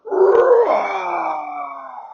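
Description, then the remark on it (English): A loud, bellowing Tyrannosaurus rex roar bursts in full, then stretches out for about two seconds, sliding lower and gradually fading, with no other sounds around it. “They didn't have to look very long, because just as they started moving across the beach, they heard a thump, thump, thump, thump, thump, and then they heard a loud roar.”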